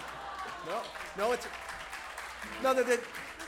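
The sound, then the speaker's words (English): Audience applause for a performer's stage banter, a steady wash of clapping lasting a few seconds, with short bursts of voices and cheering rising over it now and then. “Nice, you got applause for your banter.”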